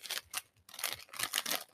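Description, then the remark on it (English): Scissors snip open a crinkly bag of goat cheese and espalette pepper potato chips, labelled in French, in a quick series of crisp, rustling cuts, bright and papery, with a brief pause partway through and no one talking. “Here, I got scissors so we don't have to be fighting and trying to open all this stuff.”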